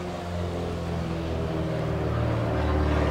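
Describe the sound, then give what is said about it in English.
A steady, low airplane engine drone hums continuously, with layered harmonic tones and a slight swell in loudness toward the end. No voices are heard. “And I'm going to turn that airplane up.”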